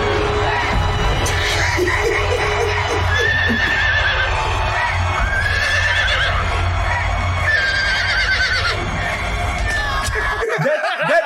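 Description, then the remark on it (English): A horse neighs several times in rising, quavering whinnies, with hooves clip-clopping beneath a constant busy background din of a crowd, all fairly loud. “He got distracted by the horse.”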